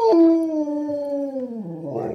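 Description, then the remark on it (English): A single sustained wolf howl sound effect, loud, sliding slowly downward in pitch over about two seconds before breaking into a rougher, noisier tail at the end, played as a jingle marking competition time. “That's our patented second captain's wolf howl right there, which of course means it's competition time.”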